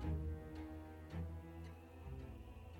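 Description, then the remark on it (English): An old wall clock ticks steadily, about four soft, evenly spaced ticks over a low, sustained tonal hum; the ticks are quiet. “The old clock on the wall ticked away the seconds, its steady rhythm like a heartbeat in the quiet summer night.”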